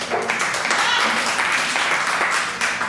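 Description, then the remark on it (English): An audience claps steadily for a few seconds, a dense, even wash of applause with no single standout claps, moderately loud throughout. “Like, show of, like, applause. Let's applause.”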